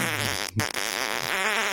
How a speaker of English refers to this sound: If that was a real fart, it would be like a... Like a breath. Because there's nothing in there that would make the...